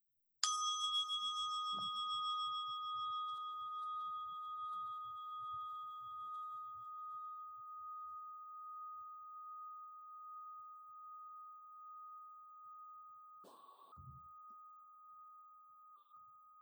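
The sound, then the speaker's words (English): A single bell is struck once, ringing out with a bright metallic attack and a long, pure sustained tone that slowly fades over many seconds, with a faint knock near the end. “And I'm going to ask you to tell me your deepest value, except I want you to listen to the bell. And when you can no longer hear the bell, tell me your deepest inner value.”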